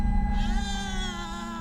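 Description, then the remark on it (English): Auntie's cat Snookums, perched on a fence, gives a tense, drawn-out hissing yowl as it puffs up, fairly loud, holding steady for a second and a half with a low rumbling undertone and no talking. “Snookums begins to hiss and puff up.”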